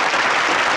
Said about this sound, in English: Let's have a big round of applause for Maria Gynoy.